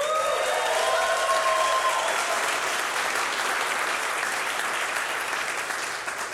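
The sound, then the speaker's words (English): A crowd claps in sustained, dense applause that stays loud throughout, with a few whoops and cheers rising over the clapping at the start before it slowly eases off. “Can we hear it for”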